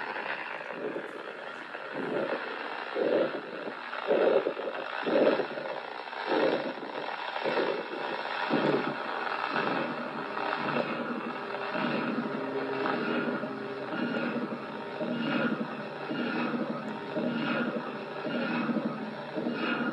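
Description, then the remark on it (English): A film's soundtrack signal with a steady, wavering chorus of overlapping tones, like many cats meowing together, pulsing in a regular rhythm of about one beat per second for the whole stretch, with no talking. “Sounds like a bunch of cats meowing all together.”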